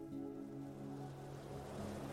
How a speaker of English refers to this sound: You have a perfect view of the small, gentle waves rolling into the shoreline.